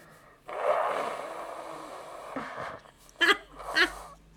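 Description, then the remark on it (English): Someone blows their nose: one long, breathy, rasping blow, then two shorter, sharper honks close together. The nasal noise is moderately loud and has no talking over it. “Okay, pause. I have to blow my nose.”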